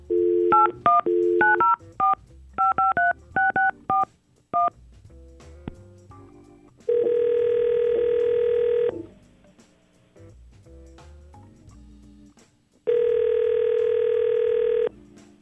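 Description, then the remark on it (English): Radio hosts call a woman: a rapid series of telephone keypad tones dials a number, followed by two long, steady ringback tones separated by a pause, with no voices over them. “So hopefully we can get Paige on the phone and get him some answers. Let's try to call her.”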